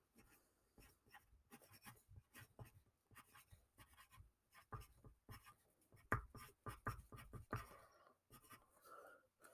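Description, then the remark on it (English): Pen scratching across a ripped scrap of paper in quick, uneven bursts of strokes, fairly quiet, with brief pauses between words and a few firmer scribbles near the end, as a score prediction is written down. “I don't really have an extra piece of paper, you guys.”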